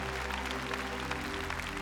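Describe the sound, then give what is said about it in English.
A crowd in Sydney, Australia claps steadily for the Lord in dense, continuous applause, with a low steady hum beneath it and no voices standing out. “Come on, give the Lord a mighty hand for the Holy Spirit.”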